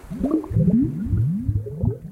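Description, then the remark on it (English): Underwater ambient noise in Puget Sound: a dense, murky soundscape of low gurgling and repeated rising, warbling tones, steady and fairly loud throughout, with no voices. “But underwater, it's a very different story.”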